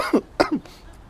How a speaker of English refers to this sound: And y'all are like, yeah, keep going. Keep coughing.